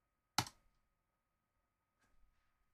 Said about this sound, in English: Yay! I rolled so well. Oh, it's got sound effects. My dice have got sound effects now.